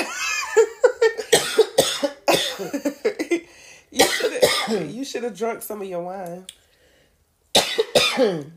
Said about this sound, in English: Hang up because I got a cough.